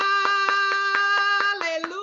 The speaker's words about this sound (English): Come on, I'm going to clap my hands. Come on, glory to God.